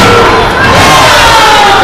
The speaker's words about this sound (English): Crowd loving it here at Combat One.